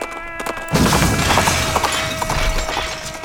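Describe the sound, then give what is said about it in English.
A loud crash as someone crashes through a crate of dishware, followed by a sustained clatter of shattering crockery and tinkling fragments over a few seconds, dense. “Brown the Bandit, also known as Marshal Shiloh Brown, has crashed through the crate of dishware.”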